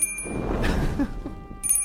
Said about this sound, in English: You ring the bell and another portal opens before you.